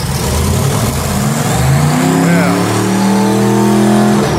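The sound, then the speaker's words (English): A car with a loud, rumbling muffler that has a muffler problem drives by, its engine note rising as it accelerates past, heard over faint background talk. “We paused for a second because that was Peter's car that he drives back and forth from the park. I have a muffler problem.”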